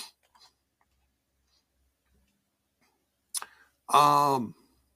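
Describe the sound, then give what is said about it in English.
A computer mouse clicks once or twice, sharp against near silence, as someone clicks on Sacrifice, an event listing with an X Division Championship match, then a short voiced utterance follows right after. “Okay, clicking on Sacrifice.”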